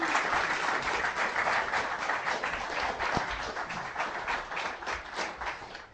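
A crowd claps steadily for six seconds, a dense, even patter of many hands with no voices over it, holding at a fairly constant moderate loudness throughout.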